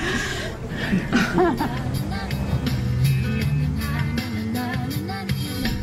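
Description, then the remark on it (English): Soft, dreamy pop music plays steadily inside a car, mixed with a low engine hum, while people talk and chuckle over it. “I do like that car music. Let's leave that little extra piece in.”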